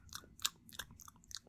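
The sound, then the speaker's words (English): A voice imitates loud, exaggerated angry chewing during an argument, a quick run of wet crunching bites repeating in an uneven rhythm, with no talking. “And she's chewing angry, and I'm chewing angry, and she's chewing angry, and I'm chewing angry, and it turns into fucking music.”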